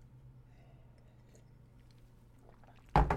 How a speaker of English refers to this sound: Another sip of my orange juice here.